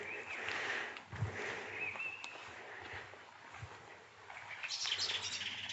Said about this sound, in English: There's another alarmed blackbird.